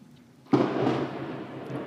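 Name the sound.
thunderclap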